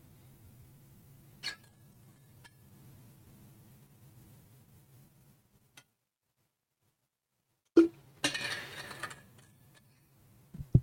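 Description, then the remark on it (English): A low steady hum with a few scattered clicks and knocks, then a loud clunk followed by about a second of hissing, rushing water being poured into a glass, and two sharp taps at the end. No talking. “Let me get some water.”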